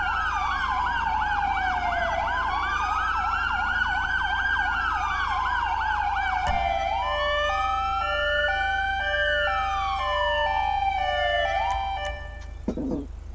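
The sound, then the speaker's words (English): A loud police siren starts with a rapid warbling wail, then switches to an alternating two-note high-low tone over a rising and falling wail, with no voices. “I replaced the hyper yell with high low.”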